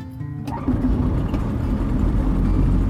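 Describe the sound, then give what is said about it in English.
The propeller engine of an aluminium-built 2008 Evecta Sports Star light aircraft in Echuca, Victoria cranks and catches about half a second in, then settles into a loud, steady, rumbling drone. “And from here, your reporter does the same in a much more contemporary aluminium-built 2008 Evecta Sports Star. Clear prop!”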